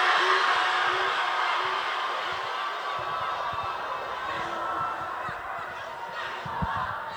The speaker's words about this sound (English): All right. I heard some people booing. You know how shit your life has to boo the Caribbean.